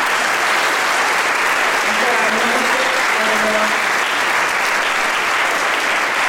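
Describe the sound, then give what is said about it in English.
A crowd applauds the event's leaders for putting the event together, a steady, dense, even wash of clapping that stays loud from start to finish, with faint voices murmuring briefly underneath partway through. “Let's give them a hand just for putting this together.”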